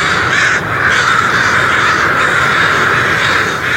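A dense, continuous din of thousands of crows cawing at once, loud and overlapping with no gaps, as a huge flock leaves its roost in the morning, about an hour before sunrise.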